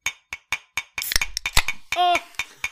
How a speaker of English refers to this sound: I didn't bring a can, so I'm bumping my decaf coffee with my Fernet Branca. Just clink them. Clink them hard. Clink them. Clink them good.